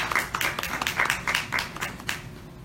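At a church service, a group of people claps together in steady, overlapping applause as a man comes up to lead prayer, keeping an even, moderate level throughout, with no voices standing out above the clapping.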